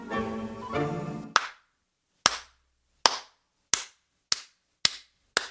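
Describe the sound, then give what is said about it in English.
Seven loud, sharp hand claps ring out one at a time, starting slow and gradually quickening, each with a short echoing tail, after a brief sustained tonal sound at the start. “I assume you're all joining me in this clap as you slowly stand up.”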